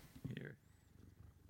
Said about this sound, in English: You have a cat. If anyone's hearing Omar, it's not a cat in your engine bay. It's Omar. Do you hear his purring? I don't, but they might.